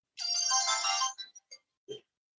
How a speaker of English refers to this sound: you can turn off that startup chime. You aren't stuck with it, which is possibly a relief to some.